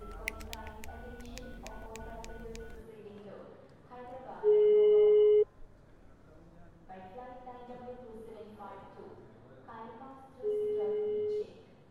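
Two long, steady ringback tones of a phone call ringing, each about a second, separated by several seconds, fairly loud over a busy melodic background; a call to a friend in Mumbai, made before boarding a plane.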